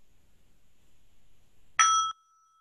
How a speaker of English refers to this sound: I invite you to put your other hand on your heart and know that this chime is being rung for them and for you.